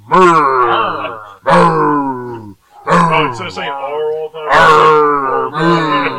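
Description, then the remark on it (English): A man imitates a minotaur airship pirate, letting out a series of five long, growly moos with a gravelly, exaggerated pirate drawl, each loud and sliding in pitch, separated by short pauses. “So it's more like, how do you moo with a pirate accent?”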